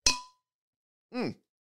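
A single bright clink of glasses rings out sharply and fades within a moment, followed after a short pause by a brief voiced sound with a falling pitch.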